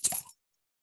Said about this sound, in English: That sounded like you were jingling your keys. The keys have a bottle opener attached, and that opened my beer.